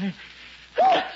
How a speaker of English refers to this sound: Bless you.